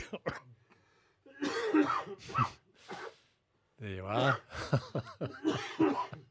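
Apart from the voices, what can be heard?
coughing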